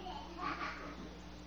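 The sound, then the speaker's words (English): Infants and a young child make faint babbling that rises briefly, a short high vocal burst over a low steady hum, with no clear words. “Sorry, there's infants and my child.”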